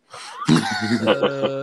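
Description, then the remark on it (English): A rising, breathy intake leads into one sharp sneeze, followed immediately by a voiced, drawn-out trailing sound. “God bless you.”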